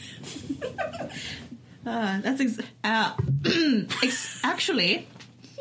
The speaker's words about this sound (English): I was trying to do like a fake cough